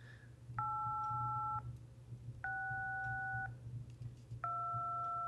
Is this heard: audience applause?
no